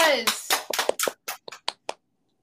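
A brief burst of applause: roughly nine sharp hand claps in a quick, slightly uneven rhythm that grows sparser and quieter before stopping, following a short vocal sound at the start.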